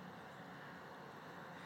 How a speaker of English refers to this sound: I'll tell you after this loud truck goes by. We see you, buddy.